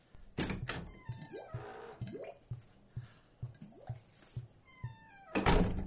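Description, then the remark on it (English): A door swings shut with a loud thunk near the end, after an earlier sharp bang and a run of soft, evenly spaced low thumps with faint whooshing in between. “Close the door!”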